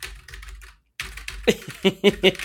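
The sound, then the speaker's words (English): Quick, clattering keystrokes on a keyboard number pad, fairly loud, with a brief pause before a burst of sharper, heavier presses near the end. No one speaks. “There's something that makes me feel like a 1980s accountant when I use a number pad.”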